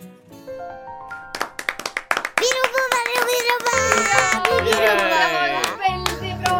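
crowd, audience cheering and clapping

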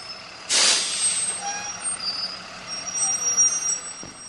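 vehicle, bus with air brakes

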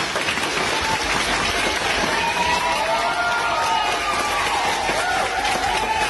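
crowd, audience standing and applauding

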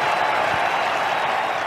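crowd, cricket crowd cheering

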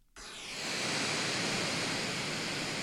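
sound effect, brown noise

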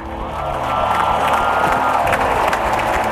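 crowd, crowd cheering

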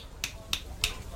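human body sound, finger snapping

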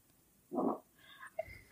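human body sound, fart

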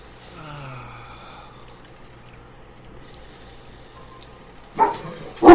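animal, dog barking

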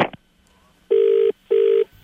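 signal or alarm, telephone ringing

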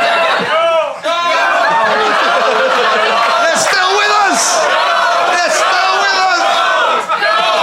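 crowd, enthusiastic crowd cheering

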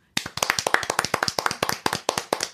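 human body sound, hands clapping

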